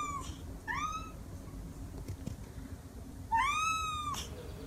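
A Manx cat meows three times at the Manx Cat Cafe: two short, rising cries followed by a longer, drawn-out meow, over a low hum with no talking.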